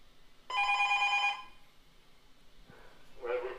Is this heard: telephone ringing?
yes